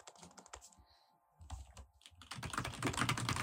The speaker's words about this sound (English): Like, can you hear me? Like, I'm typing right now.